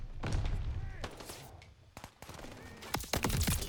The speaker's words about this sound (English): Oh, what was that explosion?